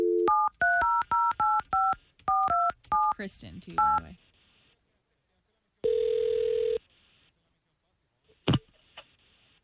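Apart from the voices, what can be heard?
telephone dialing and ringing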